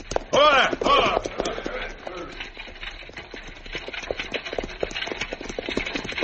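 Horses pull an approaching buckboard wagon toward dusk, their hooves clip-clopping in a steady, quick rhythm at moderate volume, following a brief loud, strained vocal sound at the start.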